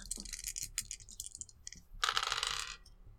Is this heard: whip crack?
no